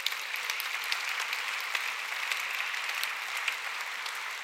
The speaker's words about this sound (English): Also, just shameless plug, this is Celebrate Recovery's New Heights 5th year anniversary today for Celebrate Recovery. Hallelujah. You can clap.